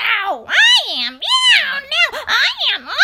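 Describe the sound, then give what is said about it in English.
A chorus of cats meowing loudly, with long, wavering meows rising and falling in pitch and overlapping one another almost continuously for about three seconds. “I am, cried hundreds and thousands and millions and billions and trillions of voices, for each cat thought itself the prettiest.”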